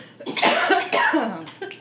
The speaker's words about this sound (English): Everybody's coughing. It's okay. Even I'm coughing. See? Those old lungs, yeah.